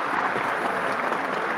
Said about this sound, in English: Here's Scout. She's on your screen. Round of applause for Scout right there.